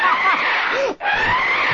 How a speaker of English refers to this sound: I think we upset …. Back there screaming.